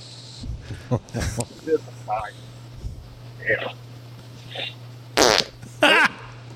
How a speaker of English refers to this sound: Is that just constantly playing over there? Yeah, it's ten hours of farts, and it's just the cadence of we don't know.